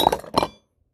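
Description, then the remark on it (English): A microphone knocked over: two sharp, clanking knocks in quick succession with a bright metallic ring, fading into silence within about half a second. “Sorry, I knocked the mic over.”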